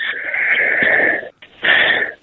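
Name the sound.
coughing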